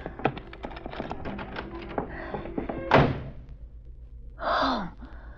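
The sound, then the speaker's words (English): Quick metallic clicks and rattles, like keys working a lock, lead up to one solid thud of a door shutting as a woman gets inside her home and locks the door, followed by a short breathy exhale. “Give me me time to get inside and lock the door, and I'll be safe.”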